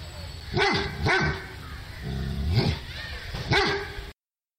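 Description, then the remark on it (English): A dog barks four times in an uneven rhythm, sharp barks separated by short pauses, with a low background rumble and no talking. “If you are listening to this one and have a dog anywhere nearby, you might want to get their attention. Here's some help.”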